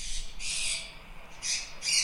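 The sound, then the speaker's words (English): A macaw squawks four times in harsh, raspy bursts, two long calls followed by two shorter ones, loud, with no one talking. “You know what that probably is? It's like a big bird. It's too, a like bird. A macaw.”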